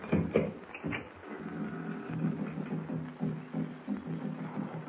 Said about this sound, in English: Hear that? I hear some drums off in the distance. Now on tom-tom. That's what they are.